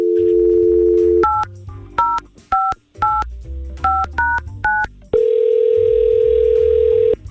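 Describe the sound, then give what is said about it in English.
A steady telephone dial tone gives way to a quick run of about eight keypad dialing beeps as radio hosts in San Antonio call a man, then a long, loud ringing tone sounds on the line. No one speaks. “so let's try to get him on the phone, and hopefully it won't be too uncomfortable.”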